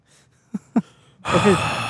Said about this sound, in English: I can hear you breathing